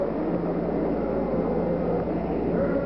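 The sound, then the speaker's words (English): A dense, continuous rumbling roar of Saturn V rocket engines at the Apollo 11 liftoff in July, loud and steady throughout with no pauses, like a massive engine blast. “0, all engine running. Liftoff, we have a liftoff.”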